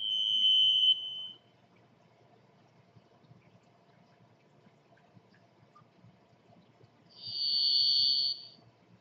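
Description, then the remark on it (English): A varied thrush, perched in a fir tree, gives two long, drawn-out buzzy whistles several seconds apart, the first lower in pitch and the second higher, over a faint steady background rumble. “He mounts the chancel of some fir tree and utters at intervals a single long-drawn note of brooding melancholy and exalted beauty, a voice stranger than the sound of any instrument, a waif echo standing on the shores of time.”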